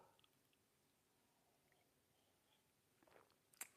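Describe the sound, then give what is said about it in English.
Near silence, then a short, soft slurping sip of coffee from a mug near the end, followed by a couple of sharp clinks or clicks. No one speaks. “Fill it with your favorite liquid. I like coffee. And join me now for the unparalleled pleasure”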